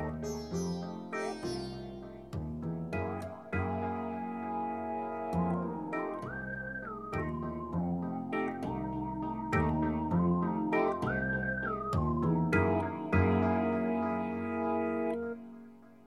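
An instrumental music tune plays steadily with no voices: a high, whistle-like lead melody slides between notes over sustained, effects-heavy synth chords and a low bass.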